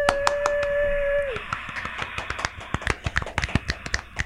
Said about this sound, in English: Yay. Studio audience clapping.